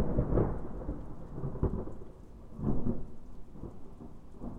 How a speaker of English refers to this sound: He stepped outside into the pouring rain and mud.